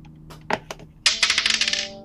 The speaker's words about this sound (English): All right, I'm gonna flip a coin and decide which direction I want to take, at least.